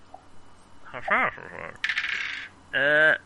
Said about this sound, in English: Can someone make up Cthulhu Mythos roll for Dr. Kafar? Oh, wait, no, I've got two dice.